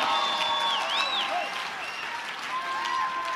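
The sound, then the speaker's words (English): An audience claps loudly and steadily, a dense wash of many hands that never lets up, with a few raised voices and high tones rising above it. “Come on, if you're a part of that end time church, let the devil hear your hand clap.”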